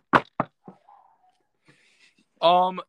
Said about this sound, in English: Cross our fingers. Knock on wood, everybody in the audience.